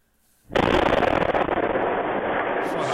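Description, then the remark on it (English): A sudden, massive blast from a gas leak at a construction site in Orleans, Ottawa, Canada, captured by a doorbell camera, erupts after a brief quiet, followed by a sustained, loud rumbling roar that fills the space and doesn't fade. “A gas leak at a construction site triggered a large explosion captured by a doorbell camera.”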